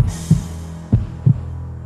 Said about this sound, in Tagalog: Napatingin siya sa akin, dahilan para mapaiktad ako at muling kabahan. Ang lakas ng kabog ng dibdib ko.